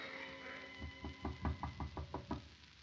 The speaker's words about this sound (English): Her father knocks at the door.